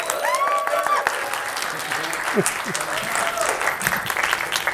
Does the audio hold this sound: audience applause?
yes